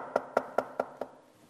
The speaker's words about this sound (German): Und heute Abend klopft er an deiner Tür.